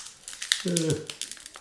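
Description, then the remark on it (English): Crinkling and crackling of a wax paper card pack being worked open, a steady run of small rustles, with a brief murmured vocal sound partway through. “Trying my best here to open it. You can hear it.”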